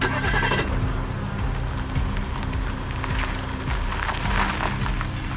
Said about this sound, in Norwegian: De hopper inn i bilen igjen og kjører derfra.